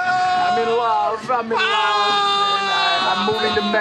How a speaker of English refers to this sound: Walking and yelling.